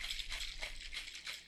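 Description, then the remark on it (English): A cocktail shaker holding 5 ounces of sake and no ice, lid on, is shaken in a quick, steady rhythm of about four hissing, rattling swishes per second, fairly quiet, with no voices. “Then you can set your glass aside and go back to your shaker, add your 5 ounces of sake, place the lid on, and shake, shake, shake.”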